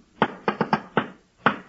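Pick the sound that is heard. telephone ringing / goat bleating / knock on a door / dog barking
knock on a door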